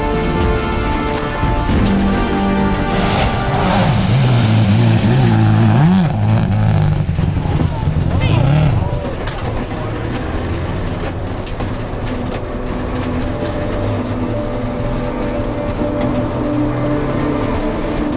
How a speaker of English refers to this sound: A heavy hit in the water splash chokes out the car. They press on, but with a split radiator hose, they're limping to the end.